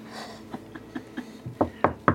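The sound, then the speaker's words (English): A steady series of about seven knocks on a 4-foot statue, the first few soft and light, the last three much louder and sharper, evenly spaced. “Knock on the statue.”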